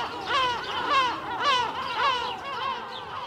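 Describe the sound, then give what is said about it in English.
A flock of over 24 seagulls caws and squawks from the roofs of buildings, several harsh, rising-and-falling calls overlapping continuously, fairly loud and busy with no pauses. “Over 24 seagulls returned the caw from the roofs of the buildings behind them and rose to reveal even more archers.”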